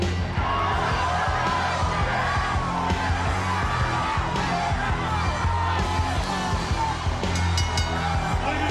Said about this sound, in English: Whoa! Whoa! Listen to this crowd! Listen to this response!